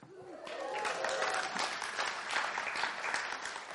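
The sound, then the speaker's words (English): An audience breaks into steady, sustained applause, a dense wash of many hands clapping at once, rising quickly and holding at a fairly loud level throughout. “Thank you for not making me cue you to clap.”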